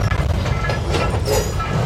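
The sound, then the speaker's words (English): A train, Thomas the engine, rumbles steadily along the tracks in Baltimore near the roundhouse, a continuous low roar with faint metallic rattling and a brief higher squeal rising through the noise. “Okay, just as we were walking towards the roundhouse, Thomas came rumbling down the tracks.”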